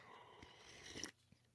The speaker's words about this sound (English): Hold on. I'm going to have a sip of coffee.